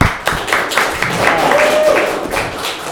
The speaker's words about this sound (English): Is there a none of the above? Yeah. Round of applause for none of the above.